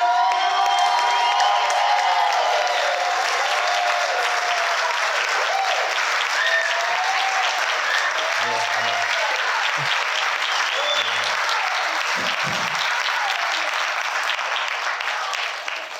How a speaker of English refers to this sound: Y'all stay standing and clap for your pastor.